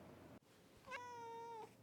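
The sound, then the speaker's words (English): A single drawn-out cat meow, clear, rising at the start and holding steady for under a second before cutting off, with nothing else around it. “Do you like being a cat?”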